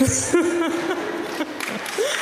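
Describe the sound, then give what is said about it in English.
An audience claps in a steady, dense patter that lasts a couple of seconds, with voices and murmured reactions mixed in underneath. “I mean, don't applaud me, applaud the news agents and post offices, because I looked.”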